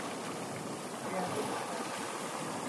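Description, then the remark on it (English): Sea waves wash over pebbles at Skerries Beach in a steady, continuous rush of hissing water, even in loudness throughout, with no distinct breaks between waves. “You can hear the sound of the sea over pebbles.”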